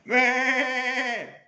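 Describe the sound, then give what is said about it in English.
A single goat bleat from a goat grazing on a hill, loud, a quavering, wavering cry that holds for about a second before dropping off at the end, with no other sounds around it. “So you quietly come up the hill and you see this goat grazing in front of you.”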